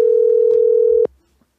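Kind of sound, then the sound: signal or alarm, telephone dial tone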